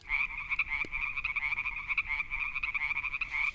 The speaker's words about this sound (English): And those are frogs.